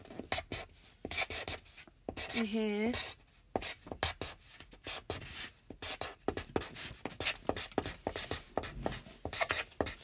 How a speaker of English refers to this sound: There, I'm signing my signature. My name and the big butted stick figure.